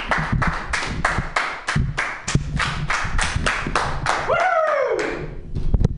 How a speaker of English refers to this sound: Anyway, but he's a great comic. So let's give him your round of applause, all two of you.